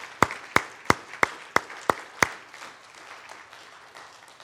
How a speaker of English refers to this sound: And today, I just want to give you a great big applause. Thank you, thank you, thank you.